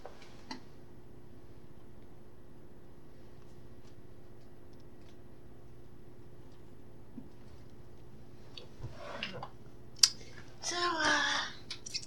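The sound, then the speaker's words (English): Crunchy chewing of crisp Rice Krispie cereal flakes: scattered small clicks and crackles at first, then a louder burst of crunching near the end over a quiet background hum. “I could have swore they were actual pebbles, but they're flakes now. Rice Krispie flakes.”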